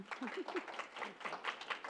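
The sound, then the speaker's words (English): An audience at a church claps steadily for about two seconds for a Grove Kids team speaker, a dense round of applause, with a faint voice briefly audible near the start. “So another big clap for her, too.”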